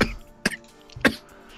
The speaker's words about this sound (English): And not die from coughing.